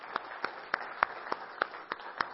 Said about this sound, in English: can we just give a round of applause for our sound audio team, our ministry team